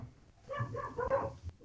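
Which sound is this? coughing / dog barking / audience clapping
dog barking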